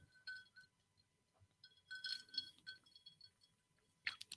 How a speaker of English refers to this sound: Disregard my ice clinks in my drink here.